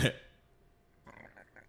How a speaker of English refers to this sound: Whoa. That was a weird throat burp. It was like a gurgle. It wasn't even a burp.